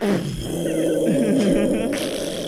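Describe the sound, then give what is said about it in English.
A voice imitates a farting explosion as a nuke button is hit: a continuous, loud, rumbling buzz with a wobbling low pitch that sputters on for a couple of seconds, ending with a brief hissy burst. “Oh, a farting explosion?”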